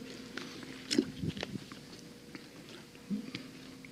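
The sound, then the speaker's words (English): Someone drinking water: a few soft gulps and wet mouth sounds spaced over a few seconds, with quieter clicks and a faint low hum in between and no talking. “Maybe if I drink water, that'll help.”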